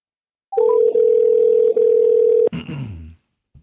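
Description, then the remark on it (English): A loud, steady telephone dial tone hums for about two seconds with two tiny breaks, preceded by a few quick rising beeps, then cuts off abruptly into a rough, throaty noise. “All right, let me make a call here and see what I got.”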